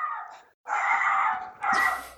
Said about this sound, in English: Yeah, my dog is barking.